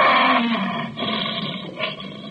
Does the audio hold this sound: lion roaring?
yes